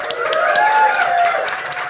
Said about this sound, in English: I think we should give them all a big round of applause.